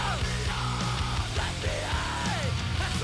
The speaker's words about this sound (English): This is one of those two where, you know, we had everybody here doing the group shouts